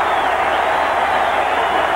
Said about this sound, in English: And Hank, this crowd is going crazy.